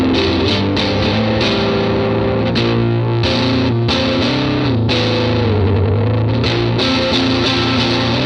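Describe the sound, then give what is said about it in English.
Heavily distorted electric guitar, pushed to maximum distortion with a Longsword pedal, plays loud, saturated sustained notes and chords with a thick, fuzzy tone, short choppy breaks between phrases, and no one talking. “Most of my, gain pedals I kind of just used to push things a bit, because I use my longsword to kind of get like maximum distortion.”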